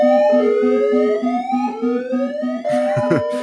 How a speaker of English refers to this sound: But I am smashing the panic button on Joe Mixon. Cue panic button noise, wah, whatever.